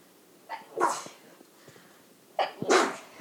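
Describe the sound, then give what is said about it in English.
Two sharp sneezes from a person who is sick, about two seconds apart, each starting with a brief catch of breath before a bursting, breathy release, with quiet in between and no talking. “And by the way, guys, okay, I'm going to sneeze.”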